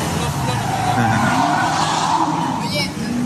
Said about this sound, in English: Yeah, some screeching cars. Good action.